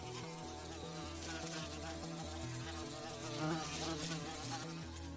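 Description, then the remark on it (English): A dense, steady drone of bees buzzing, several wings humming together in a continuous layered whir that swells slightly midway, with no voices. “I think most of us probably are a little, if not a lot, scared of bees.”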